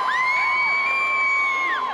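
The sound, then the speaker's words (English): A large crowd in a huge indoor arena in Houston, Texas, cheers loudly and steadily for high school classmates announcing their colleges, with high whoops and shrill yells rising above the roar, echoing. “The crowd is pumped up, but they're not here to cheer for a team.”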